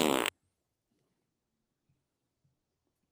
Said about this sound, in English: So to you, Vacaville officer, I give you a big fat fart.